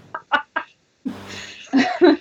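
A person imitates a duck, making three short nasal quack-like bursts followed by a drawn-out buzzy quack and two louder quacks, fairly loud.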